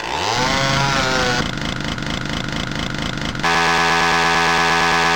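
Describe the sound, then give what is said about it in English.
A chainsaw weapon in a first-person shooter PC video game, used to slice up demons, roars to life, its engine pitch sweeping upward before settling into a loud, steady, buzzing idle, then surging into a harsher, gritty revving grind. Continuous, with no voices. “you can equip your brass knucked fist or go Evil Dead and bring out the chainsaw”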